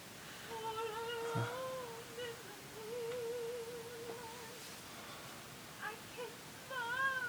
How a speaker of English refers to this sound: Oh, he's a sad boy cat thing.